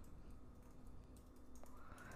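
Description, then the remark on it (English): Soft, quick clicks of typing on a computer keyboard as someone types a new name for a rating scale, a steady run of keystrokes heard fairly quietly over a low background hum, with no voices. “I'm just typing it.”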